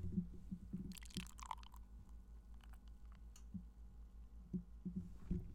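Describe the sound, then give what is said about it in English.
Beer is poured in a short, splashy burst near the start, partly spilling onto a person's leg, with a few wet drips and clicks after it over a low steady hum. Nobody speaks. “I poured it on your leg.”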